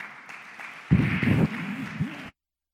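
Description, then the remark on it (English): An audience applauds in a dense, steady patter for a couple of seconds as a speaker is introduced, swelling briefly with a few voices calling out before it cuts off abruptly. “So please help me introduce the one who will present him, Student Minister Jeffrey Muhammad, with a round of applause.”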